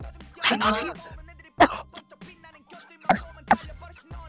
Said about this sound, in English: You coughing, honey.